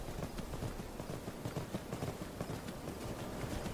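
Horse hooves clip-clop in a steady, continuous rhythm, the quick hoof strikes repeating over a dense background with no talking.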